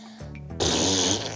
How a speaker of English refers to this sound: On the way to the dress shop, Baby Medusa farted the most putrid and loud fart ever.